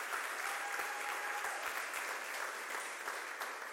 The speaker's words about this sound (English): So yesterday we had 18 people go into the river. Yes, you can clap.